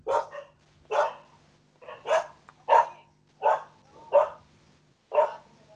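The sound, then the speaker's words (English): Dogs barking territorially in a steady run of about eight sharp, fairly loud barks spaced roughly evenly, with a faint low hum underneath and no talking. “And the dogs are doing their territorial instinct number.”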